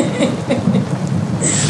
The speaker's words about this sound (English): There it is. Storms are coming. Lightning, thunder, heavy rain, hail. Ooh, hail's a coming. I'm bringing hail.